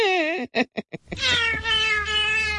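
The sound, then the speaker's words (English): A cat lets out a loud meow, then four quick chirping bursts, then a long drawn-out wavering yowl over a faint low hum. “I go, honey, I'm singing to a cat.”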